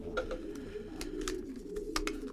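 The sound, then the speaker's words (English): Low, throaty cooing of a pigeon used to carry messages rolls on continuously, a soft rumbling murmur punctuated by a few brief rustling bursts like wing flutters. No one speaks. “Well, this is actually the bird that we use whenever we are trying to get a message”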